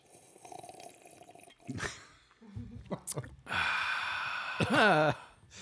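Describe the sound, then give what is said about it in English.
Someone drinks sarsaparilla, with a few quick gulping swallows, then lets out a long, loud, breathy exhale that ends in a voiced, satisfied "ahh". “You can imagine me drinking sarsaparilla.”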